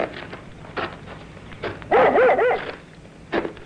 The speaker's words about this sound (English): Here, what's the matter with your dog? Oh, he seems to have found something ahead there. It's not like him to get that excited. What's the matter with him?